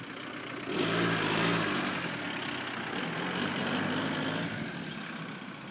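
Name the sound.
car engine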